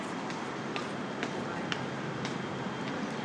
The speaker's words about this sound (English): Holy shit, there it is, there it is. There's the train. There's my train. So I think I see my train up there.